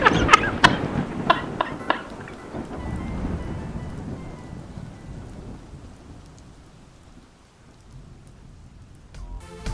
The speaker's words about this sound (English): as you glance over your shoulder, you watch Ranger John stare at you wide-eyed, mouth agape, as lightning crashes into the distance.